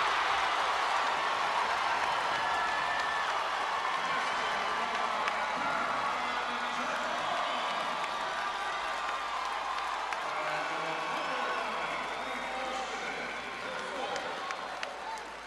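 A packed basketball arena roars with sustained cheering and applause at a women's college game between James Madison and App State, after a coast-to-coast layup and foul late in the fourth quarter; a dense wall of crowd noise stays loud throughout, with scattered whoops rising above it.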